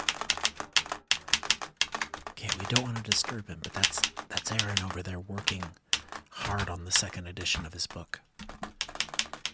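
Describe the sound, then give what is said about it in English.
Rapid, steady keyboard typing: a dense clatter of keystrokes running throughout, with someone talking over the clicking in several stretches. “I'm trying not to bug him while he's typing.”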